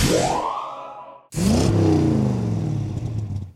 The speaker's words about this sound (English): Oh, is that a motorcycle?